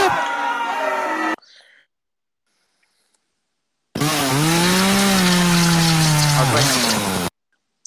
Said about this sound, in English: That was a slow chainsaw. You gotta do that quicker, man.